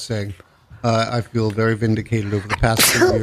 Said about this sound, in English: Bless you. Sorry. Bless you, honey.